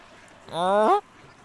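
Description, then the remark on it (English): A single loud, nasal duck quack rings out, lasting about half a second and rising slightly in pitch, with quiet background before and after. “That she does look like a call duck.”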